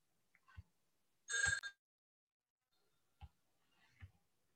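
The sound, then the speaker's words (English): A single short burst of a telephone bell ringing in the background, faint, with a few soft low knocks or taps scattered before and after it, otherwise quiet. “Well, that phone rang in the background and I immediately thought of the phrase from the gospel, It is I myself.”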